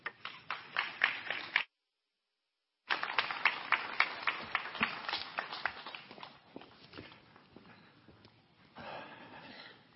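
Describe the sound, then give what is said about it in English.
An audience claps, a dense crackle of many hands that cuts out abruptly for about a second, then resumes just as strongly and gradually thins and softens toward the end. “I'm glad you clapped for that one.”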